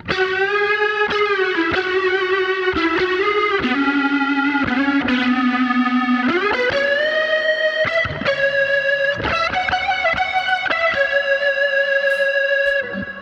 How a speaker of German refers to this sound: Und wenn du dann zum Beispiel hier mein Fass-Sound, warte mal, jetzt, man hört schon den Rotary-Speaker rauschen.